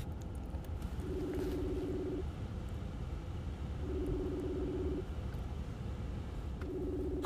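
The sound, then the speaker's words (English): A phone ringback tone purrs in three evenly spaced bursts, each about a second long and low-pitched, with short silences between, over a steady background hiss. “Oh, well, it's still ringing.”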